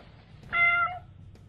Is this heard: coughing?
no